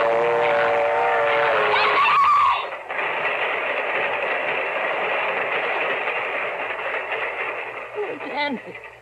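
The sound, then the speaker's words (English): A loud, steady roar of a train approaching and rumbling along the track fills the scene, with a brief tonal whistle-like sound at the start and a shouting voice near the end. “It's caught in the train! Hey, it's not coming down your track. It's coming down this one!”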